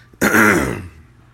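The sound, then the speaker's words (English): A man with a frog in his throat clears it once, a sudden, raspy, gravelly rumble lasting about half a second before trailing off into quiet, with no talking over it. “So, man, I got like a frog in my throat.”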